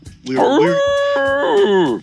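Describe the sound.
A person's voice imitates a wolf howl: one long, loud wavering cry that swoops upward, holds, then slides and rises again before cutting off.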